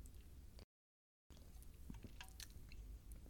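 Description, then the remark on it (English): Wet mouth sounds of someone sipping Diet Dr. Pepper: small slurps, clicks and a swallow, with a brief dead-silent gap early on and no talking. “Let me grab a quick sip of Diet Dr. Pepper here.”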